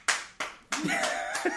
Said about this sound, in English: And a huge round of applause from all our faithful viewers out in the peanut gallery.